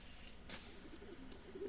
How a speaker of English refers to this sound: Well, see, full of pigeons. Hear that?